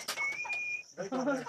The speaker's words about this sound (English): Look. This is my bird.